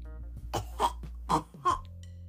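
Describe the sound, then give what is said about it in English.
Four loud, forced coughs in two quick pairs, given from behind a lion-shaped bench, with no talking around them. “Percy tiptoed to the back of the lion-shaped bench and coughed loudly.”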